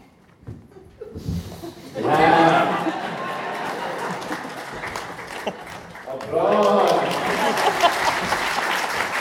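A crowd breaks into applause, steady clapping that swells twice with bursts of cheering and laughter mixed in, loud and sustained across the whole stretch.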